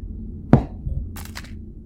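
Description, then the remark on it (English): A sharp crack of something hitting a hard surface, followed by a dull thud and a brief clatter and scrape of smaller objects tumbling down, then quiet. Things falling off a shelf. “You hear things fall off a shelf.”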